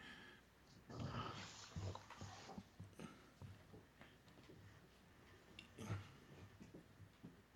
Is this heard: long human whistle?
no